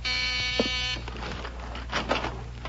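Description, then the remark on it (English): A front door buzzer gives one harsh, steady electric buzz lasting about a second, then cuts off and leaves soft rustling and low background hum. “That's the front door.”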